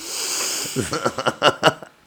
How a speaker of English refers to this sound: Hey, stop sniffing the mic.